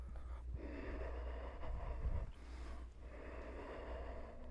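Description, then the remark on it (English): Slow, steady ujjayi breathing, a soft ocean-like hiss of air that swells and eases with a brief break midway, over a low background rumble and no talking. “It's rare that when I'm breathing ujjayi that I'm not putting effort into it.”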